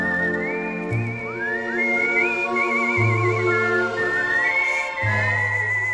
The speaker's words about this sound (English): Yeah, well, this is great. It's great whistling. I mean, I don't know who's whistling.